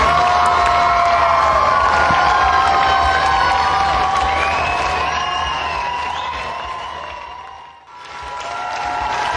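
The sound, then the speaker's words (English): A large outdoor festival crowd cheers and screams continuously for an encore after a performer ended her set with a drum solo and walked off stage, with whoops and shrill voices rising above a dense roar that fades briefly near the end before swelling again. “And everybody's screaming for more here for ….”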